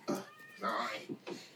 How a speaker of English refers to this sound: it just happened, that is named Lady Day, and she's named after …. She's the most talkative cat in the world.